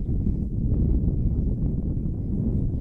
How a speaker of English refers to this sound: There's a gust of wind again.